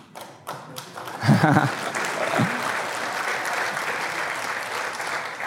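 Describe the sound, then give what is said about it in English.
An audience in a church breaks into sustained applause during a sermon, a dense, steady wash of many hands clapping that swells after a brief pause and continues at an even level, with a few voices briefly audible within it. “Before you clap, let's listen to the whole sermon.”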